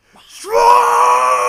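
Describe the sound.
A person mimics a scream from a metal song, a single loud, sustained vocal wail that rises quickly at the start and then holds steady for about a second, with no other talking around it.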